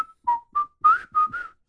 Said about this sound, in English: My personal whistle, the one we all just heard together, thumbs down.